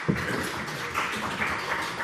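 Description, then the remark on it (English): Steady applause from an audience, many hands clapping together in a dense, continuous patter that holds at a fairly even loudness throughout, with no voices over it. “Round of applause.”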